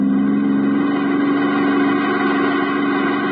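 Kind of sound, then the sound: vehicle, speeding car engine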